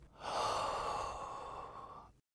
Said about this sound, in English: Allow each breath to bring you deeper into relaxation. Breathe in. Breathe out.